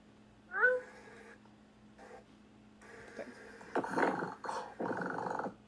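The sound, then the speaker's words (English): A person imitates a cat: a clear, fairly loud meow, then shorter mews, followed by a rough, rumbling purr that swells in bursts near the end, with no speech. “I really liked how there were meows and there were purrs, and I don't know how you purred that authentically.”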